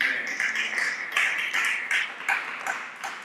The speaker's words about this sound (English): And the only people clapping are the ones who receive false prophecies.